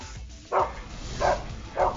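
A dog barks three times, short woofs spaced roughly evenly apart, moderately loud over a low, steady background hum.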